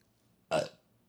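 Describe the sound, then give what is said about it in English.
A single short, loud burp lasting about a quarter second, with a quiet background before and after. “The burps are back.”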